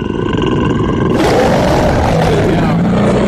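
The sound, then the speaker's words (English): A loud, angry bear roar sound effect, the 'angry West Hollywood bear' on the show Kill Tony, played when a comedian's 60 seconds are up, rumbles continuously for about three seconds, deep and gravelly, swelling harsher and fuller after the first second before holding steady to the end. “Aw, that means wrap it up then, or else you're going to bring out the angry West Hollywood bear.”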